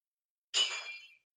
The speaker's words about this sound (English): That sounded bad. Oh, you heard the crash? I was like, that sounded like glass crashing. It was a heavy toy.